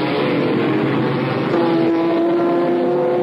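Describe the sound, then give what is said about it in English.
Ford race cars roar as they accelerate hard up to 220 miles per hour down the 3.6-mile Mulsanne Street straightaway during the 24 Hours of Le Mans, a loud continuous engine drone with a steady rising tone that sharpens and holds partway through, with no voices. “From above, you can see the Fords accelerating up to 220 miles per hour down the 3.6 mile straightaway.”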